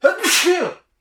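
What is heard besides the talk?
sneeze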